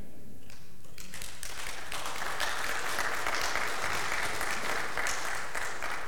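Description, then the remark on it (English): A church audience breaks into steady applause, many hands clapping in a dense, continuous patter that swells after the first second and holds fairly even to the end. “That ought to save a rounding applause and an amen from our church, right?”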